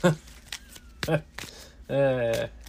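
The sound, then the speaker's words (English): A few short, crisp bursts of a deck of cards being shuffled, spaced irregularly, with a man's voice speaking briefly between them. “Alright, shuffle, shuffle, shuffle.”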